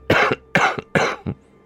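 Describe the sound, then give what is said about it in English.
Three harsh, wet coughs in quick succession, each with a short follow-up hack, fairly loud with no talking. “What I recognize is if this is tuberculosis cough or something.”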